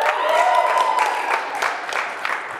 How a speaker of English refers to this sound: Now you Wisconsin people can cheer. Go ahead, yeah.